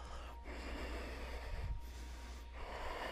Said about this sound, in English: Now deep breathing here, deep breathing. It's audible, it's rhythmic, it comes from your throat. It's a little wind tunnel.